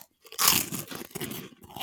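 Loud crunching of crisp Monster Munch corn snacks, a burst of brittle cracks followed by continued chewing crunches, with no talking.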